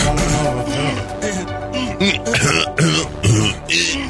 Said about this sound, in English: No, it's an entire minute plus of you guys clearing your throat in harmony and beat.